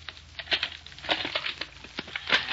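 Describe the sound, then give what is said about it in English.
A bag is unlocked with a key and opened aboard a barge: a quick run of crisp rustles, clicks and crinkles with no talking, irregular and fairly quiet. “I said you got no right to open that bag. Maybe this is the right one.”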